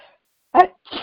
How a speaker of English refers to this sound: Oh, my. Bless you. Bless you. No. Bless you. Bless you.